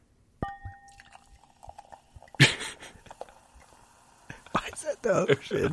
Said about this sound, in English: That's how they make the noise. Pour it. You gotta pour it in the microphone, though. Oh, here we go. I want to hear it.